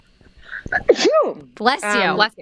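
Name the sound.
sneeze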